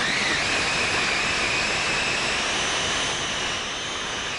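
Nuts being crunched up in a food processor: a loud, steady motor whir with a rough grinding roar and a high whine running throughout, with no talking.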